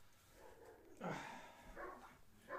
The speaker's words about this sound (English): That's why the dogs are all barking and shit.